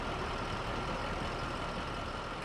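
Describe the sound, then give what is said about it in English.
An advertising truck's engine runs steadily, a continuous low rumble with a broad hiss of street noise and no break in level. “Promoters in Times Square market their products on foot, but some advertisers like to drive their message home with a truck.”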